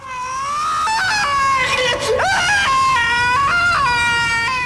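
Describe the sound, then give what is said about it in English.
A man lets out a loud, anguished death scream, high and strained, held for several seconds with a brief catch and pitch drop midway before rising again, as his character is killed in the TV drama Doctor Who. “That scream when he gets killed is really blood.”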